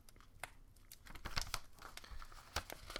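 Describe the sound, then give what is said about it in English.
Paper crinkles and rustles as a sheet listing 15 numbered animal facts is unfolded and handled, with a series of sharp crackles and soft crumpling sounds spread over a few seconds, no talking. “This is a piece of paper with 15 enumerated animal facts.”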